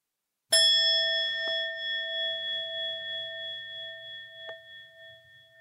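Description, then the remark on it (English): A single meditation bell is struck once, ringing out with a clear, bright tone that slowly fades with a gentle wavering shimmer, heard alone with no voices. “I'm going to start by inviting the sound of this bell.”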